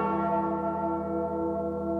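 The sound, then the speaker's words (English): A single large bell rings out loud, its deep, rich overtones humming steadily and slowly fading over two seconds with no voices present. “They go together like the Liberty Bell and its crack.”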